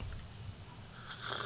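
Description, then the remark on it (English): A wet slurping sip of vanilla cinnamon cold brew coffee, quiet low mouth noise building into a brief hissy slurp near the end, heard alone with no talking. “So these 4 sips are really doing something for me. About to be 5.”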